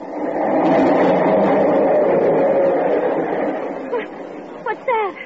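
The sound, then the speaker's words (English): A loud, steady rumble of a subway train passing right underneath a home for several seconds, on a line that runs every 5 minutes. The rumble fades abruptly, leaving a few brief squeaky, rising chirps at the end. “The subway. It's right under it.”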